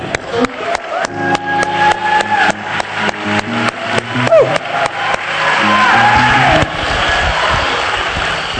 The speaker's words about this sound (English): When you get down, start clapping again.